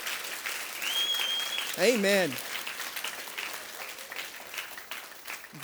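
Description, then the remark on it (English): A crowd gives the Lord a big hand clap, steady, dense clapping that fills the whole stretch, while a voice briefly calls out over it. “Come on, give the Lord a big hand clap for that.”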